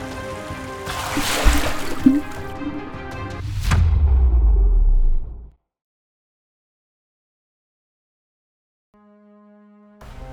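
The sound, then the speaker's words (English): Water rushes and churns steadily as it rises in a giant pool of freezing water, like a space flooding, with a low droning tone underneath; the sound cuts off abruptly into silence before a faint sustained tone returns. “The water's rising. Got about 6 inches before I go under.”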